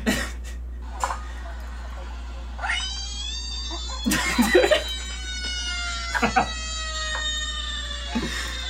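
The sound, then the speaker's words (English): A frog sound effect played as a transition sound effect: a handful of squeaky, wavering calls that bend up and down in pitch, arriving in short bursts separated by pauses over a faint steady hum. “So the name of this one is Re, and it's just a frog.”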